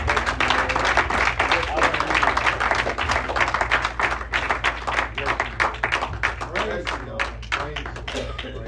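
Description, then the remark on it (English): An audience claps hands together in a dense, sustained burst of applause, giving the Lord a hand clap as a guest is called up, with some voices underneath; the clapping gradually thins into more separate claps as it fades toward the end. “I want to call him up this afternoon and give the Lord a hand clap as he comes.”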